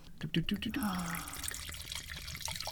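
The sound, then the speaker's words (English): Liquid pours into a glass with a gurgling, trickling splash, then a softer steady fizz or hiss. Faint voices murmur underneath. “Give me your glass. It's right here.”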